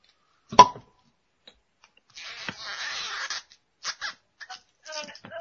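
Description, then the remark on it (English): A corkscrew twisting into the cork of a wine bottle: one sharp click, then a sustained grinding creak, followed by several short squeaky scrapes as the screw works deeper. “You probably need to drill it in. You need to drill that in.”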